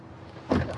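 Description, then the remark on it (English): A car's standard power door locks engage with a quick, solid mechanical clunk, followed by a softer trailing click over a quiet interior hum. “Power. Power door locks. Standard, of course.”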